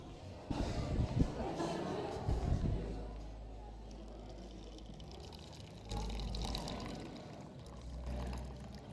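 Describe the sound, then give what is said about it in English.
Water pours in a couple of bursts, splashing and gurgling, with a low rumbling hum underneath and quieter stretches between the pours. “Needed water.”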